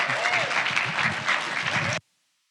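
A church audience claps steadily to welcome a preacher coming forward, a dense, continuous burst of applause that holds at an even level for about two seconds, then cuts off abruptly into silence.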